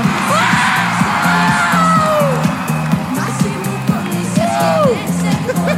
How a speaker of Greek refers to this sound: Στο Fan Club μου ένα χειροκρότημα. Σας λατρεύω.